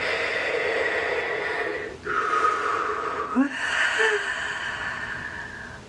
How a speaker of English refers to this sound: Breathe, nice deep inhalation. Allowing the expansion.